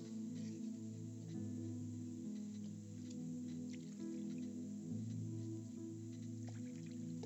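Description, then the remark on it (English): Warm water taken from a church baptistry for foot washing sloshes and drips into a basin in small, scattered splashes over a steady low hum, continuing throughout with no one speaking. “We're just going to take water from the baptistry. Okay, it was nice and warm.”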